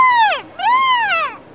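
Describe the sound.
A voice imitates a porg squawk: two loud, nasal, harmonic squawks in a row. The first slides sharply downward, and the second rises briefly before falling away.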